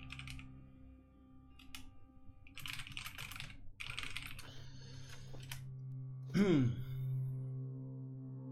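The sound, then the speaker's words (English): Rapid clacking of a computer keyboard comes in dense bursts over a low background hum, followed by a brief warbling tone near the end. No one speaks. “The typing intensifies.”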